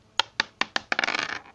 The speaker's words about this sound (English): Wait. Is it? Is it loaded? Okay, hold on. Fucking... Get the damn paper out. And you write down every number that I roll.